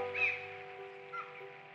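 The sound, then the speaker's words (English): A couple of harsh, squawking seagull cries, one near the start and a softer one later, over a faint steady background hum. “Do you remember the beaches and the seagulls?”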